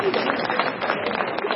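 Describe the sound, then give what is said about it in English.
An audience claps together in a steady, dense burst of applause, a continuous crackling wash of many hands at an even loudness throughout. “This has a round of applause again, please.”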